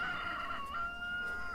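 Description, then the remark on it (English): A chicken crows in one long, steady, strained call that holds its pitch throughout, clear, with no talking and only faint outdoor background beneath it, at allotments with many little hens. “There's nobody at the allotments, which is a shame. It'd be lovely to chat with some of them at some point. Loads of little hens.”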